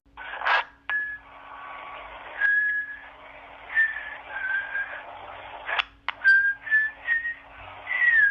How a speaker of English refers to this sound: Because it all started, this time, with a melody. I sung it into my phone, and it was just like a poor recording, but at least I had the melody in my head. So here's literally the song sung into the phone. This is the original recording, right here.